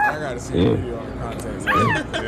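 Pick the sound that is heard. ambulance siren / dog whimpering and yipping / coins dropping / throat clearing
dog whimpering and yipping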